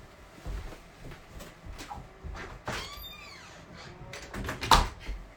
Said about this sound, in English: Okay, my cat's at the door. Let me just let him in.